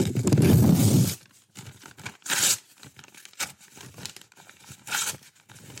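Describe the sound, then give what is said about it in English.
Paper being ripped into small pieces, starting with a long loud tear followed by a series of shorter, sharper rips and crinkles, with no speech. “I'm ripping this paper completely into small pieces, right?”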